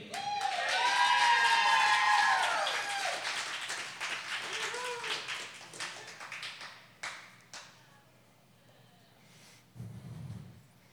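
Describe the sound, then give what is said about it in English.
A poetry event audience breaks into loud applause for the sacrificial poet, mixed with high whoops and cheers. The clapping is strongest at first, then thins to scattered claps that fade out over several seconds. “So, your sacrificial poet tonight, please give a huge round of applause to me.”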